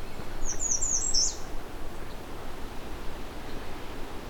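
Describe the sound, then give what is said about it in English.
A warbler sings one brief, high-pitched burst of quick twittering notes, lasting about a second, over a steady rushing background of wind or water, followed by only the noise. “This is one of the warblers I do not encounter very often.”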